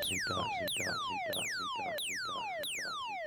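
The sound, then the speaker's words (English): A siren sound effect fires in quick repeated bursts, each a bright, loud tone swooping sharply downward in pitch, about five sweeps in a row over a low rumbling bed. “Got the siren.”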